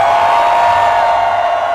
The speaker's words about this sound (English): Y'all want to remember this moment right now by getting a family photo on the count of three. Raise your hands. Let's get the light on the crowd and scream. One, two, three, scream!